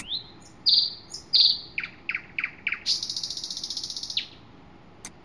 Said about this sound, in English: What was that? That's the Velociraptor. That's not quite what I had in mind. Well, the dinosaurs were distant relatives of the modern-day birds. Wasn't that a nightingale? That was a nightingale.